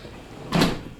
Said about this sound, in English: Close the door. Thank you.